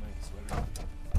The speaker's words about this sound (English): Oh, someone's knocking at the van door.